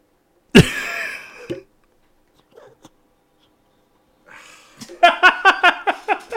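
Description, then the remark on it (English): Loud snuffling bursts from a cat sniffing right against the microphone, its whiskers scratching on it: one sharp puff, a pause with faint rustles, then a quick run of short sniffs in a rapid rhythm. “I heard like his sniffles and his whiskers scratching right, upon so the microphone, like, as mine do when I talk very closely.”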